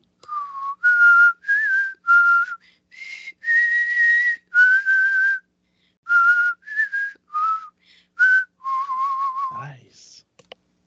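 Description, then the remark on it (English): A person whistles a dramatic tune, a string of clear, held notes rising and falling in pitch with short pauses between phrases, loud and alone with no talking. “This character, well, if you want to do some dramatic whistling, go ahead.”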